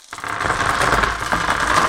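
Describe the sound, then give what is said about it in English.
Dice are rolled, rattling and clattering continuously for about two seconds, fairly loud, a busy rolling clack with no voices; one die is dropped. “New segment next to dice rolling. Shall I roll the dice?”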